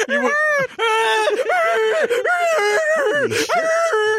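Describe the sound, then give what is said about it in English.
A person does a loud, bleating goat-like scream, wavering vocal wails and moans in several strained bursts over about four seconds. “I mean, if you're both goat screaming at the same time, that could be kind of tantric.”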